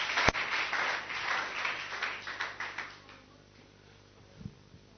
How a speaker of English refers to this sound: Wonderful. Clap for the Lord. Yes.